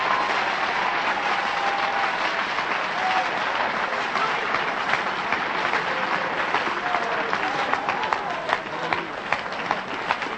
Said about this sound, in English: Would somebody clap your hands if you believe what I'm preaching tonight?